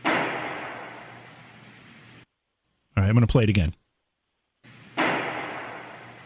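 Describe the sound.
A gunshot recorded inside a house on a handheld Tascam recorder set on a pedestal on the second-floor landing, played twice from different nights: each is a sharp, loud bang followed by a long hissing decay lasting about two seconds, with a man speaking briefly between the two.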